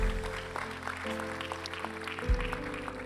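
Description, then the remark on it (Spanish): An audience claps in a steady, dense wash of applause while sustained keyboard chords hold underneath, with one chord change partway through. “Damos ese aplauso fuerte.”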